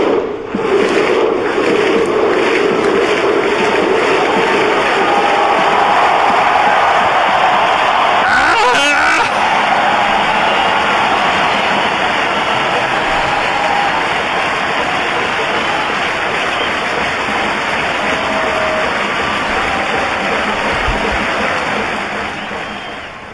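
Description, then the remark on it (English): A huge soccer stadium crowd roars loudly and continuously, joining in a chant built on single-beat unison claps followed by a 'hoof', with one sharp collective clap standing out in the middle of the sustained din. “It's like, so it's like a single beat clap and then with the hoof.”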